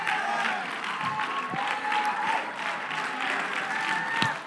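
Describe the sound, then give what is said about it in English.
An audience claps hands in a steady, dense wash of applause, with voices calling and singing faintly through the clapping. “Slap your hands like you mean to slap your hands.”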